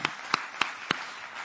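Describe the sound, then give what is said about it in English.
An audience claps hands together in praise to the Lord in a steady rhythm, sharp unified beats about three per second over a softer wash of scattered clapping, with no talking. “Clap your hands to the Lord and let's give him a little praise.”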